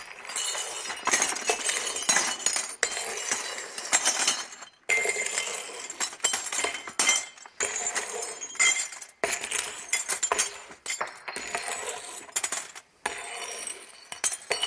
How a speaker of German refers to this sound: Ich weiss, es gibt eine Sauerei, aber das ist so mit Scherben, verstehst du?